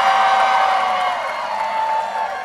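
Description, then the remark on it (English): A small crowd of about 50 people cheers and whoops at a speech urging votes for Hillary Clinton. A steady, loud wash of voices, with a sustained high-pitched shout standing out, eases slightly after the first second and continues unbroken. “Well, the crowds is like 50 people, but the crowds love this.”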